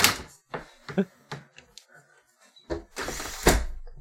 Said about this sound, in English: Let me close my window.